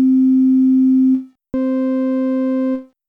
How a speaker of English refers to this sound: So here's an example of the regular sine wave followed by the rectified sine wave.